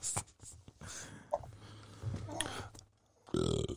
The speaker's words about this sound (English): And that's our mascot, Hank. That's Hank. You hear that growl? Yeah. You hear that nigga snoring in the background? That ain't me. Oh, shit. That's Hank the Stank, y'all.